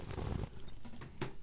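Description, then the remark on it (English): A wet, airy slurp of whiskey being drawn in during a whiskey tasting, with a sputtering burst at the start and a second short sip near the end, fairly soft and with no talking. “Ew, I heard you slurping.”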